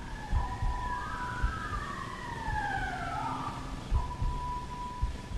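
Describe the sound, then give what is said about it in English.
A police siren wails outside, its overlapping tones sweeping slowly up and down at moderate volume, with a steady pitch beneath and low rumbling thumps in the background. No one speaks. “Is that a police siren or a home alarm?”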